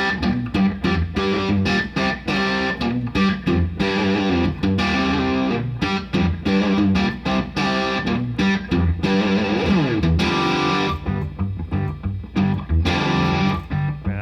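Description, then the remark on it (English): A loud, distorted electric guitar riff played on open strings chugs along in a steady, driving rhythm with repeated sharp attacks, playing continuously for the whole stretch with no voices. “So it was like, it used that open string thing, and it went.”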